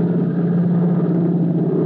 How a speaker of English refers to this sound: Only the steady drone of the plane answers Tim's question.